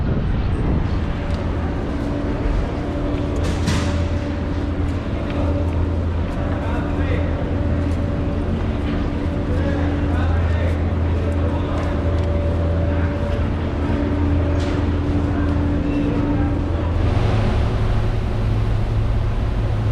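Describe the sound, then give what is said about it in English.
A steady, loud engine drone with a deep hum and sustained tonal rumble from the Staten Island Ferry's motors running throughout as it crosses the water to Staten Island, New York, with faint indistinct voices and movement mixed in. “Okay, we've crossed the water via the ferry.”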